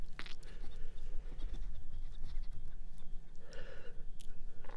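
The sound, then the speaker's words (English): A ferret that has just been picked up breathes heavily, quick snuffly puffs of air mixed with soft rustling and chewing-like clicks, steady throughout with a couple of sharper bursts, no one talking. “That's the noises he's making. Say hello. Was that heavy breathing?”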